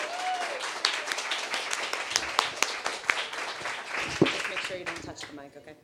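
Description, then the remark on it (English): An audience at a Provincetown fundraising storytelling evening applauds the first storyteller, a woman stepping up, steadily for about six seconds, a dense, loud wash of many hands clapping, with a few brief cheers or whoops rising over it before it starts to thin out. “So a very brave woman is stepping up, and let's give her a huge supportive round of applause.”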